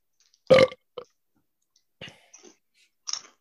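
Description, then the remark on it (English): A loud, low, croaking burp bursts out, followed by a few softer clicks and small mouth noises, with no talking. “This doesn't taste fizzy, but I feel so gassy.”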